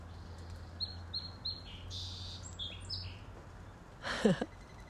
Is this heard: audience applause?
no